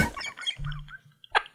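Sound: person imitating a chicken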